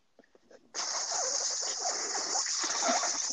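After a brief quiet moment with faint clicks, a steady stream of urine suddenly starts splashing into lake water, a loud, continuous hissing patter that keeps going to the end.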